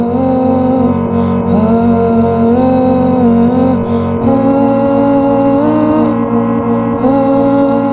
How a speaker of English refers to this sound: The rhythm is being created by some filter in the modified section. And remember, this is a homestyle keyboard, but it's been modified by some weirdos, and I bought it on eBay. It is the exact sound you hear in the final version.